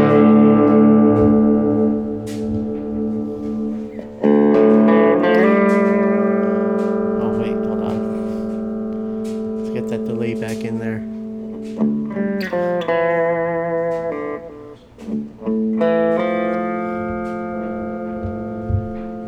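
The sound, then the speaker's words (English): A sustained electric instrument plays held, ringing chords drenched in reverb, notes blurring into a washy tail, with a few brief pauses and re-struck phrases throughout. “Just had a reverb.”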